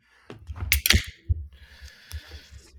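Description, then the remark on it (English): A few sharp, crisp finger snaps crack out in quick succession after a 3, 2, 1 countdown, followed by a softer stretch of steady hiss and faint clatter. “I'm going to snap here. Ready? 3, 2, 1.”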